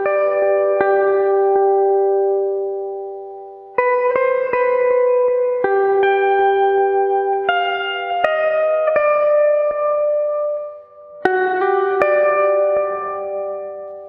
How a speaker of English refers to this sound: It had to sound spacey, but also have some meat to it in the second half. In the end, I decided that the clean electric guitar soaked in reverb would be a nice touch. Sounds sort of lonely, which is indicative of the vast emptiness of space.